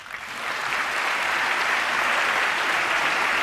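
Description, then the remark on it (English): Steady audience applause during a political speech about a national infrastructure program, with Paul Ryan among those clapping behind the speaker: a dense wash of clapping that swells in over the first half second and then holds at an even, loud level with no voices rising above it. “The problem is what he's about to say after this stupid applause.”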